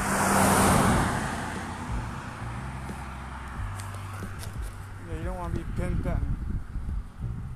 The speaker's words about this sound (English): Oh, car coming. Get out of the way.